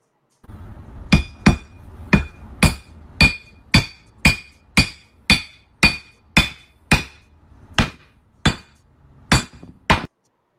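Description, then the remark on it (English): A hammer repeatedly strikes a glass Crown Royal whiskey bottle, about sixteen loud blows in a fairly steady rhythm, each hit giving a sharp crack with a bright glassy ring, and nothing shatters. “I want to know how the fuck this thing is not shattering.”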